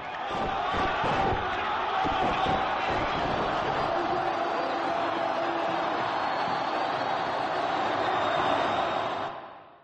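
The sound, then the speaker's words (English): A massive crowd roars and cheers at the news that Hosni Mubarak has gone, a dense, loud wall of shouting voices that holds steady for nearly ten seconds before cutting off abruptly. “Listen to that crowd.”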